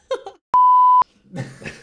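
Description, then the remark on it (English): A single loud, steady censor bleep lasts about half a second, cutting sharply between bursts of voices, with talking just before and laughter-like chatter right after. “I'm beeping that.”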